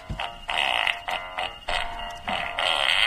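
A quick string of loud, buzzy fart sound effects, five or six blasts in a bouncy rhythm tracing Jingle Bells, as from a dog that ate a musical Christmas card, with no talking.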